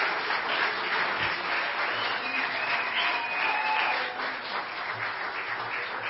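Steady applause from a sizable audience fills the room, dense and continuous clapping at a fairly loud level with a faint whistle or cheer rising briefly in the middle.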